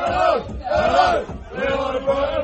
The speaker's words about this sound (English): Game crowd, crowd noise. Yeah, yeah. Hello! Hello! Hello! We are the Brighton boys.